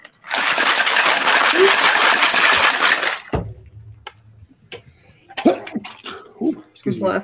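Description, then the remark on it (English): A man sneezes loudly and forcefully, the sneeze trailing off after a few seconds, followed by a low hum and then brief, quieter vocal sounds. “Bless you, sir.”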